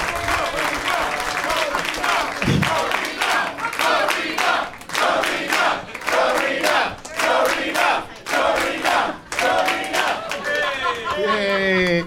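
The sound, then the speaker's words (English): A large audience at the end of a live show bursts into loud, sustained applause, dense clapping mixed with cheers and shouting voices, continuing without pause for the full twelve seconds. “And one more round of applause for this audience. Give yourselves a round of applause.”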